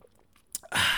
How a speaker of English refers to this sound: When I gulp like this, let me take a sip.